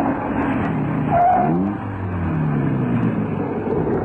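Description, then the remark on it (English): A car engine rumbles steadily, then its pitch drops as the car pulls over and stops, settling into a lower, idling hum, with no talking. “Anyway, pull over and stop.”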